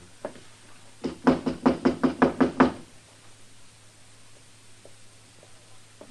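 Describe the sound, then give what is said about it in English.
A series of about eight firm knocks on the wooden door of hotel room number 9 in quick, steady rhythm, fairly loud, followed by near silence with a faint low hum in the background. “Go ahead, Temple. Knock.”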